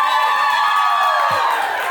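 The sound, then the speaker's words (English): A crowd cheers and claps in a loud, continuous roar of mixed voices and applause that holds steady for about two seconds, with a few whoops rising out of the din. “Yeah, everybody clap.”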